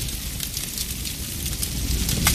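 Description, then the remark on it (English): A spreading household fire at night crackles and roars steadily, with sharp pops and snaps over a deep, continuous rumble of flames, fairly loud throughout. “In the middle of the night, there are two sounds a spreading household fire can make.”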